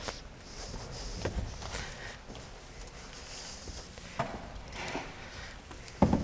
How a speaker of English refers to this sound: to bring their chairs forward.